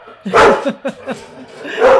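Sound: dog barking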